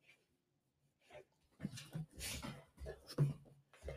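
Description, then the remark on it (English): A big dog named Jude scuffles while a person wrestles with it, giving short whimpering vocalizations and heavy breathing amid bursts of rustling movement, after a quiet start. “I'm like fighting with this dog. This dog literally weighs as much as me.”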